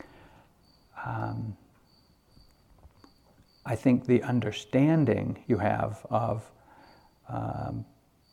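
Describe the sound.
A thin, steady chirring of crickets runs faintly through the background, continuing beneath a person speaking in short phrases with pauses.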